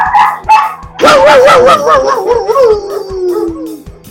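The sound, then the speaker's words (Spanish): A dog gives a couple of quick barks, then breaks into a long, wavering, yowling howl that slowly slides lower and fades. No one speaks. “La mía ladrando, ya escucho el tuyo.”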